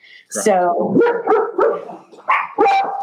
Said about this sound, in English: There you go. Dog. The pups agree. They agree with me.